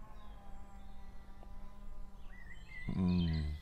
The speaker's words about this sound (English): There's birdsong, chainsaws.